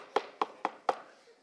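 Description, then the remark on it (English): Four sharp knocks on a bedroom door in a steady, even rhythm, each a short woody thud with a brief ring, then quiet. “I got a knock on the bedroom door.”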